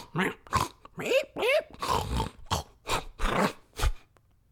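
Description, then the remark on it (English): A person imitates a pig with a quick series of about nine loud grunts and snorts, some squealing upward, in an uneven rhythm before falling silent. “I'm also a pig.”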